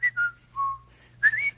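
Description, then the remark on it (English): Someone whistles a short, halting run of clear notes, each a brief pure tone, ending in a louder rising phrase, with a faint low hum underneath and no talking. “You can't whistle and talk.”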